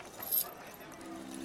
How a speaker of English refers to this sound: A hush fell across the crowd as they heard the shuffle of chains across the steps behind the stage.